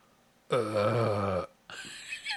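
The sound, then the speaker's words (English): A voice imitates the horrible croak of a monstrous frogman creature: one loud, guttural, burp-like rasp lasting about a second, followed by a shorter, rougher gurgling croak. “That's a horrible croaking sound.”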